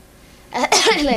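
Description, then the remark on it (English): After a short quiet stretch, a voice lets out a single loud, harsh cough-like burst that breaks off briefly, then trails into a rough, voiced exhalation. “She'd cough.”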